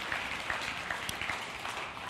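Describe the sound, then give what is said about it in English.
A church audience claps steadily after hearing that 43 people came forward to be baptized, a dense wash of overlapping hand claps holding at an even, moderate level with no voices or words rising above it. “Can we clap right now?”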